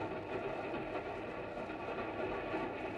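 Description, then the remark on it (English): A steady, dense rumble of a moving westbound passenger train, with continuous low mechanical roar and faint rail clatter filling the whole stretch at an even, moderate level, no voices. “looked at each other from opposite seats of a westbound train.”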